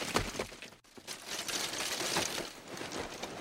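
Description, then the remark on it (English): A Foley track for Helm's Deep: a dense, continuous clatter of many footsteps and shuffling movement performed by Foley artists to picture, with rustling and crinkling layered throughout, like a crowd on the move. A brief gap breaks it early on, and no one speaks. “All that movement of all those people. Footsteps. These are all performed by Foley artists to picture.”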